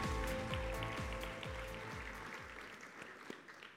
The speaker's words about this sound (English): Yeah, let's clap for that.